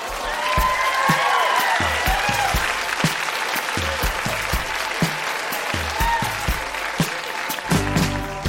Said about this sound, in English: Huge round of applause for everybody who read tonight.